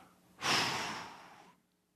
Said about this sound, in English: What we do every Sunday. Breathing.